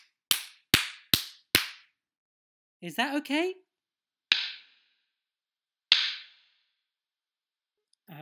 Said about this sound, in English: Could you clap? Yes, could you clap it for me, please? Could you clap the number? If it was 2, you'd go... and if it was 5, you'd go...